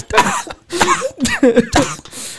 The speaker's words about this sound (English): I always like the expressionless cough.